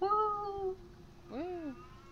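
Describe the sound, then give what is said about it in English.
A cat meows twice: a long, drawn-out cry followed after a brief pause by a shorter, rising-then-falling meow, both clear with no talking. “So I know the cat was like, well, yeah.”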